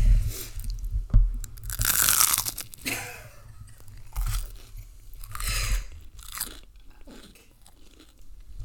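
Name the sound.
crunchy food being chewed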